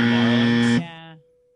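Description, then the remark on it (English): A harsh, low-pitched game-show double buzzer blares loudly for nearly a second after a wrong guess in a name-that-team trivia game, then drops into a shorter, softer second buzz before cutting off, with no talking over it. “Stop with the double buzzer.”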